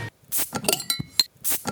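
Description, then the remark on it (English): Glasses clink together in a toast, a few quick bright knocks followed by a short high ringing tone, moderately loud, with rustling clatter around them and no talking. “Cheers, man. Cheers.”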